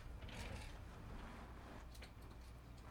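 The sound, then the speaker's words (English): A chair scrapes and slides across the floor with a few creaks and small clicks, a steady rough noise lasting a few seconds with no one talking. “I just did a Chris Collinsworth chair slide.”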